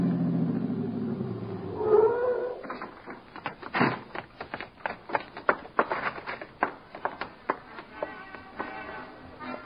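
A car engine hums low, a short tire squeal rises as the car is twisted into the alley leading to the stage door of the Dodge Theater at about 1:25, then a steady run of crunching, clicking sounds follows as the vehicle rolls slowly in, with no voices.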